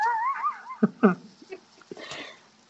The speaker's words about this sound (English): Who was yawning?